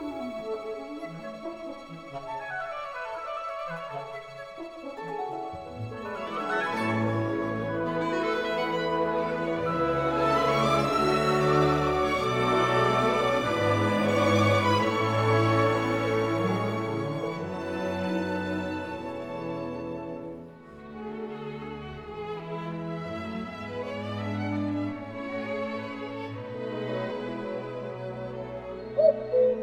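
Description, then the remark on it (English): Orchestral music plays without voices, layered strings and winds weaving soft cooing, birdlike calls over a full, steady texture that briefly thins before swelling again; from a five-movement piece (prelude, dove, hen, nightingale, cuckoo) based on music by Bernardo Pasquini. “Now this piece has 5 movements. Prelude, which means just an introduction, the dove, the hen, the nightingale, and il cuckoo, or the cuckoo, which is based on the music of Bernardo Pasquini.”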